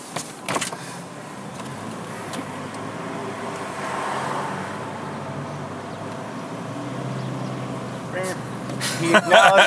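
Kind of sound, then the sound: vehicle, car driving on road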